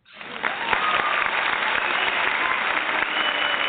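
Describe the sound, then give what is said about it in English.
Steady applause from many hands, a dense wash of clapping that swells in quickly and holds at an even, fairly loud level without voices. “And we're going to give you some hand claps for that.”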